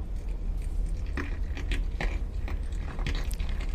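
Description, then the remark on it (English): Underwater on a reef, kinna fish graze macroalgae or kelp: sharp, crackly bites and scrapes repeat irregularly over a steady low rumble, several bright clicks bunching around the middle and end, with no voices. “Kinna make one of the loudest sounds on the reef as they graze macroalgae or kelp.”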